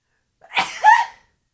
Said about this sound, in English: And I'm totally leaving that sneeze in, even though we're not videoing today.